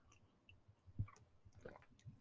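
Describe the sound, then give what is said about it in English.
Someone sips a cup of tea, with a couple of soft, wet slurping and swallowing sounds against a quiet background. No one speaks. “I'm just going to sip my cup of tea.”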